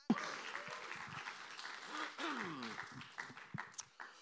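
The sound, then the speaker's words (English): An audience applauds a man invited up to share a testimony: steady applause fills the space, a dense wash of many hands clapping at once, with a few voices and cheers rising through it before it tapers off. “can we have a round of applause for Ray?”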